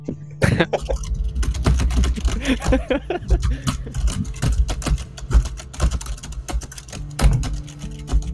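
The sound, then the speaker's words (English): Steady, rapid clacking of someone typing on a computer keyboard, with irregular bursts of keystrokes over a low background hum and no talking. “We'll still hear you type, right.”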